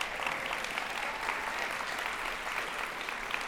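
Sustained church audience applause for a group from Chico Evangelical Free Church, a dense, steady wash of many hands clapping at once with no pauses and no voices standing out.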